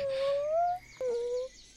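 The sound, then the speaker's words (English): A voice imitates a whimper: two thin, high, drawn-out whines, the first slowly rising and the second slightly shorter, separated by a brief pause. “Oh, Silwe, is Winley whimpering next to him? I think so. Actually, that was really me.”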